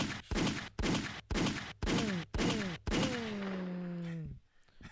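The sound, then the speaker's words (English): Six loud gunshot sound effects fire in a steady, evenly spaced rhythm, the last blast ringing out longer with a falling, whining tone before it cuts off. “They do get gunshots, though.”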